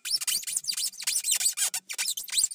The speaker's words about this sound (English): Some of the squeaks were definitely close to the styrofoam squeak, and some of them just sounded like you were stepping on a squeaker toy.